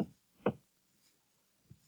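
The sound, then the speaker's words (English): Knocking on a door: three dull, muffled raps, the first two close together and the last after a longer pause, fairly quiet with no voices. “Suddenly, Lewis sat up, wide awake. What was that knocking?”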